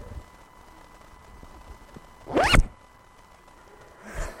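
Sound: zipper being zipped up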